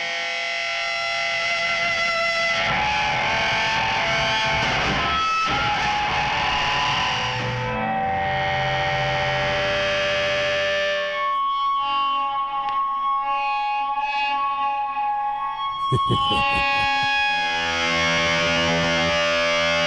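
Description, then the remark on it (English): A loud, heavily distorted electric guitar roars with buzzing, sustained chords and harsh feedback-like tones, shifting through gritty noisy bursts and ringing held notes with no voices. “For those that know, musical distortion.”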